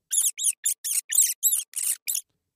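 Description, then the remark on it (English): A rat squeaking in a sewer: eight short, shrill chirps in quick, slightly uneven succession, fairly loud and with no voices or other sounds around them. “However, there's obvious waste in the water, and you'll see the occasional rat.”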